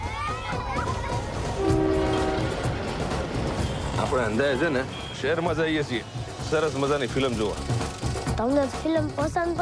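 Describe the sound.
A train horn blares in the first couple of seconds over a busy railway station rumble, then a man talks over the continuing background noise. It is a local railway station with commuters, from the film Last Film Show.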